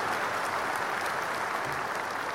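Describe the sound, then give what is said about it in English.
Steady, dense applause from a crowd applauding a game, many hands clapping continuously at an even level throughout, with no voices standing out. “let's just get nice applause for the game.”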